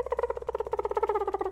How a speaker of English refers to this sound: Is that genuinely our dolphin sound? Probably not.